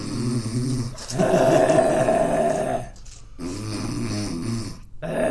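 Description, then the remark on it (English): Loud, heavy nasal breathing from a person with a deviated septum, with long raspy, snore-like inhales and exhales repeating in a slow rhythm, separated by brief pauses, and no one talking. “just focus on my breathing, okay? Listen very carefully.”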